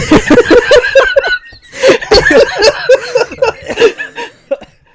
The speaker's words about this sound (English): Excuse me, I was coughing out my lung.